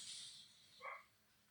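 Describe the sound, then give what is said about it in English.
A single short bark from the speaker's dog rings out, faint and brief, over a steady background hiss with no one talking. “My dog is incredibly loud. I apologize if that's getting picked up.”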